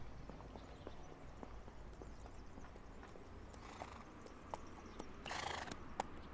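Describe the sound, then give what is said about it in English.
A horse's hooves clip-clop in a steady, uneven rhythm, fairly soft, with a short whinny or snort breaking through near the end. No one speaks. “God, a naked guy with a horse?”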